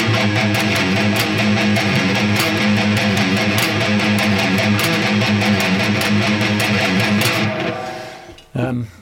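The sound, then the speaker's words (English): A heavily distorted electric guitar riff plays loud for about eight seconds, thick and sustained, then cuts off abruptly, followed by a brief final stab. “Then you had more distortion coming in.”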